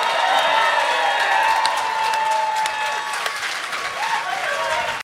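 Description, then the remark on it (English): A live audience applauds steadily for the full five seconds, a dense wash of clapping with a few cheers and whoops mixed in, holding at an even, loud level throughout. “We'll get a round of applause.”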